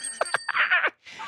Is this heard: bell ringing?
yes